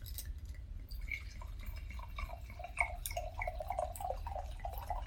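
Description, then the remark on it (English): White wine from a bottle with a plastic cork glugs steadily into a glass, a bubbly gurgling stream that rises slightly in pitch as the glass fills, over a low background hum. “So, okay, let's pour.”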